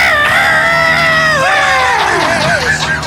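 A man screams on request, a long, loud, sustained scream that holds steady, then wavers and slides downward in pitch toward the end, with faint background noise behind it.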